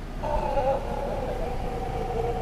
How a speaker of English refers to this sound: We're on the way to Monteverde, and we stopped to look at a group of howler monkeys that are right in the tree next to the road.